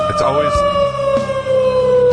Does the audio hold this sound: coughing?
no